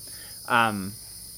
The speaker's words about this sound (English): Is that the cicada that everyone can hear? Hello, cicada.